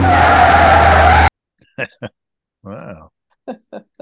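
A loud, harsh screech of car tires skidding to a halt lasts just over a second and cuts off abruptly, followed by a few short, quiet vocal sounds.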